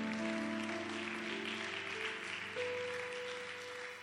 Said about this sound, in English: Why don't you acknowledge the Lord with a hand clap?